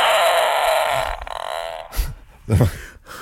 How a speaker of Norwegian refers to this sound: Og så det sånn ramme med lyd, så hun kan ta opp lyd. Så det mutteren. Det lyden av mutteren som fiser.